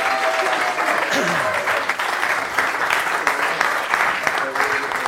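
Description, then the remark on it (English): Sustained crowd applause for the team manager during the Coventry lineup announcement, a dense, steady wash of clapping hands that stays loud and even throughout, with faint tonal traces of voices or cheering briefly rising through it. “Ladies and gentlemen, put your hands together.”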